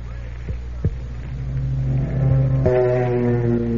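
Twin aircraft engines of a Lockheed P-38 Lightning drone steadily, rising in pitch and swelling into a loud, sustained harmonic roar, with a couple of sharp clicks near the start.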